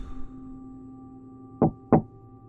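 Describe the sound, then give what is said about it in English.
Two sharp knocks on a door, the twelfth along a row of doors on the right, spaced about a third of a second apart, distinct over a low steady hum, with no voices. “Witt counted 12 doors on his right, and then found himself taking a deep breath before knocking twice.”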